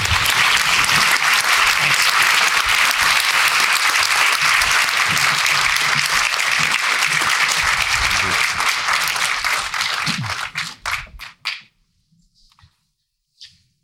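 A crowd applauds steadily and loudly for about ten seconds to welcome the guests onto the stage, then the clapping thins into a few scattered claps and fades to near silence.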